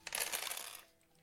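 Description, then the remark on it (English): Five dice rattle and tumble across a hard surface in a quick burst of overlapping clicks, settling within a second into quiet. Fairly soft, with no voices. “We love rolling dice. I get to roll 5 dice.”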